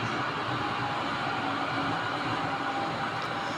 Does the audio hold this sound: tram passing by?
yes